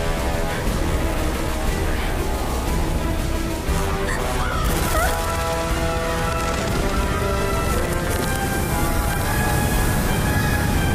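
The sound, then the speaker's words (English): Crows caw repeatedly amid a loud, dense wash of sound, their harsh calls tangled with crashing noises and sustained tonal layers throughout. “These crows just in this hole. It's a crow hole.”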